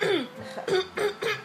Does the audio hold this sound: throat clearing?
yes